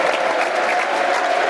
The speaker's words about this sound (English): Taking the applause of the East Stands, Ian Fleming. Look, that's what stars do. They milk their applause.